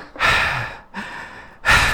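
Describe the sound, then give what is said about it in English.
Heavy panting breaths blown straight into the microphone, three loud rushes of air in quick rhythm, harsh and distorted, with no talking. “But it's still loud. It's like blowing out the speak. It's just like creepy panting.”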